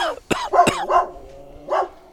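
Dogs bark at a neighbor who is outside while guarding the back patio, in a quick, uneven burst of about five sharp, yelping barks, loud, with a low hum underneath and no one talking.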